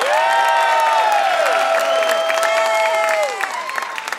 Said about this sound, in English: All right, let's get a round of applause. We're back from break.